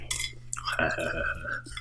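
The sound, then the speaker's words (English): Loud crunching of a crisp cinnamon-flavoured wheat and rice cracker cereal being bitten and chewed, with a few sharp bursts, followed by a brief voiced murmur from the person eating. “They're so incredibly crunchy.”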